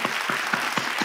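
Applause for a presentation and Q&A session, in a steady, even rhythm, with about five crisp claps standing out over a soft background wash, at moderate loudness and with no talking.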